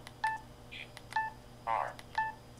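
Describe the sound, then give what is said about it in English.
A software navigation beep sounds three times, roughly a second apart: short, mid-pitched electronic tones, with softer, blurrier blips in between. No one speaks. “And you can turn off that beep if you don't like it.”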